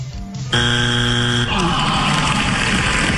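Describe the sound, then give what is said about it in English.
A car horn honks once in a loud, steady, buzzy blast lasting about a second, then gives way to rough, noisy rumble and clatter. No one speaks. “Show me honking.”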